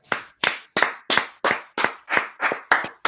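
Applause from a single pair of hands: about nine sharp, close claps in a steady, even rhythm, roughly three per second, with no voices over them.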